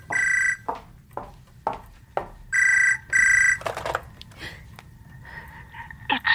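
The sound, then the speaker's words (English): A telephone rings in sharp electronic bursts, a short one and then a double ring, before the ringing stops and handling clatter follows as the receiver is picked up, then a soft breath. “I got up off the floor to answer the phone.”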